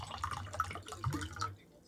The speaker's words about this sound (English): Haven't got their water. That was the other thing. Who wants some water? Glug, glug, glug, glug.